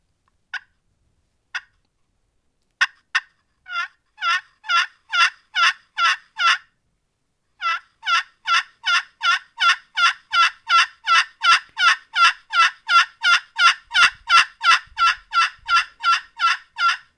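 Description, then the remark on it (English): A hen turkey gives a long, drawn-out run of yelps: a few scattered notes, then steady, evenly spaced calls repeating over and over, loud and raspy, with no talking. “Just and like so a long, almost like a just a long span of a yelp.”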